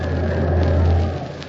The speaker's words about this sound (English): That was the champ, ladies and gentlemen, with a hard right to the jaw. And another right to the jaw. And a left. Oh, just listen to that crowd roar.